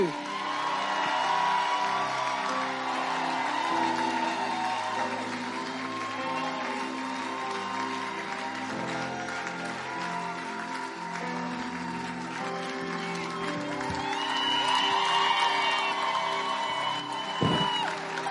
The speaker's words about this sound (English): I want to believe that you are still dazed by that word. That's why you are clapping like this.